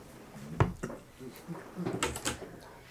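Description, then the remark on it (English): Several sharp wooden bangs and knocks land at irregular intervals as a woman fixes a door, with quieter rattling and clattering between the louder hits. “So the hardest thing is going getting back to sleep with her fixing the door. Bang, bang, bang.”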